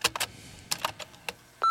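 signal or alarm, answering machine beep

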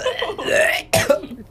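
human body sound, burp

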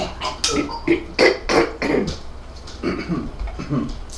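human body sound, coughing

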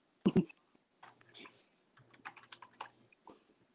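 household object, computer keyboard typing

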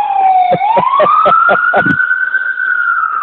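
vehicle, ambulance siren passing

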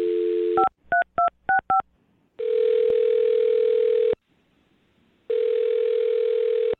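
signal or alarm, telephone dialing and ringing

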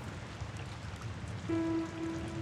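nature, rain falling

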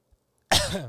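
human body sound, throat clearing

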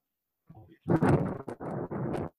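nature, thunder

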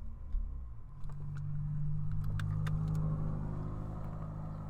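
vehicle, car driving past outside

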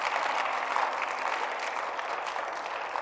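crowd, audience clapping hands

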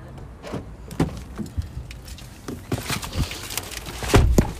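vehicle, car door locks engaging

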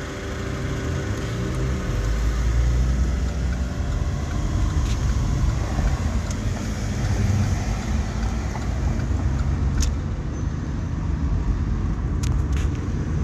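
vehicle, car engine

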